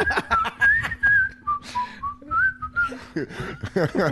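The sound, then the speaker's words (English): A person whistles a short, wandering tune loudly, bright, with sliding pitches and brief pauses between phrases, while other voices chatter and murmur underneath. “I start whistling. I don't know why. I just start whistling. Like this the loud.”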